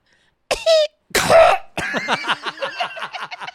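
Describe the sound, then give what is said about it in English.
A voice tries to cough and imitate an electronic beep at once: a short tonal hum, then a rough, noisy cough-like burst with a tone inside it, followed by quick bursts of laughter. “I'm trying to cough and beep at the same time.”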